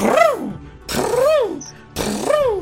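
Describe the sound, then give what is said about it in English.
A voice imitates a power drill three times in a row, each buzzing whine rising in pitch and then falling away, with short gaps between the bursts. “So even did the Dr. Drill sound pretty good, too. It sounded so real.”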